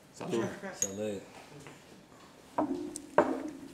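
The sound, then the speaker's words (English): Glasses clink together in a toast, two sharp bright taps about half a second apart, each leaving a short ringing tone, after a moment of indistinct voices. “Check. Cheers. Salute.”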